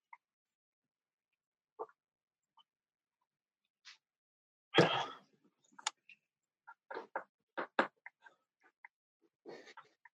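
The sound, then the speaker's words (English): Dogs at a race track yelp and bark in short, scattered bursts while they are being floated, with one louder outburst partway through and a quick cluster of yips toward the end. No one speaks over them. “So they're floating the dogs right now.”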